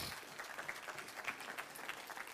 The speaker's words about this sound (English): Can you say amen? Come on, let's give the Lord a hand clap of praise in this building.